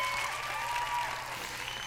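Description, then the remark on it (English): A show's applause track: sustained applause from a crowd, a dense, steady wash of clapping that holds at an even level for the full two seconds with no voices breaking through. “That's a long applause track.”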